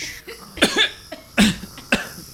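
A person coughs three times from breathing in ash, harsh, raspy bursts separated by short, uneven pauses, with no talking around them.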